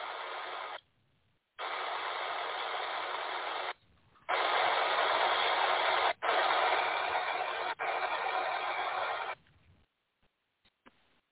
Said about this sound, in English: And so what we see here is the sound that we hear, this. We can clearly hear some static noise, but within that transmission, when you run this transmission through a spectrum analyzer, and it's all shown in the video here, it's alive.